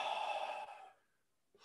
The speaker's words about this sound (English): Take a deep breath in. Blow it out. What are you doing? You're taking, breathing in him and releasing all that other toxic.